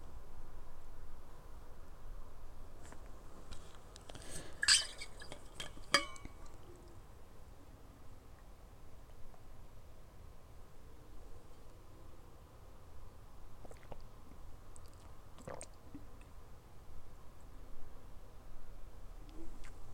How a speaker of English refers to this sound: Sorry, you're like ASMR. We're just drinking water.